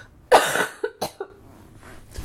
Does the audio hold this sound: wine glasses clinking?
no